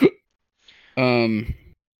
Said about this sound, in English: Sorry, I'm getting the hiccups here.